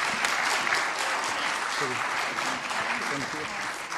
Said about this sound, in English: Amazing. Can we have another round of applause for this fantastic team?